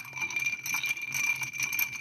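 Ice clinks steadily against a glass as a cocktail is stirred, a continuous bright, tinkling jangle at moderate volume with no voices.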